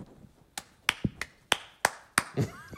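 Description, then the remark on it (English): Around seven crisp, sharp hand claps done as a sideways protest clap, in a quick, slightly uneven rhythm. Each is a bright slap that decays quickly, with a faint low murmur underneath toward the end. “It's kind of a sideways clap, like this.”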